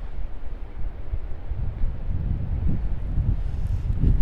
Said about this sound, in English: So we're staying, yeah, to the left you can hear, well, I can hear that there's a river that flows quite vigorously, probably down some falls. So where it's nice and slow right now. Sounds as if it would get pretty hairy down that way.